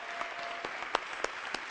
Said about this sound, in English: And for our awesome, awesome, awesome choir, let's get the Lord. Come on, give him a hand clap. Come on.